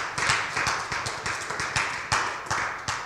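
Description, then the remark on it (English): An audience claps together in a steady, fairly quick rhythm, the sharp claps loud, repeating evenly for a few seconds with no voices over them. “Somebody clap for agape love. Clap for agape love.”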